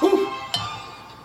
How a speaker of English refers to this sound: Ring the bell. It's the Michigan bell, by the way. Every time I rang it a lot.